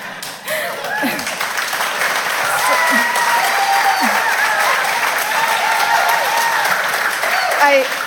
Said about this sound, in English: I made it sound like I was done, so you guys were cheering because you thought you were getting out of lunch, but unfortunately, I have one more point.